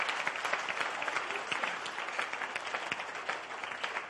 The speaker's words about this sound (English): If you are clapping, it's free. It's free.